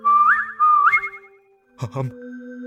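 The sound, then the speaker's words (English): Someone whistles two short, bright phrases that end in rapid warbling trills, followed by a brief rough vocal burst and a lingering steady tone in the background. “Hey, which one of you was whistling?”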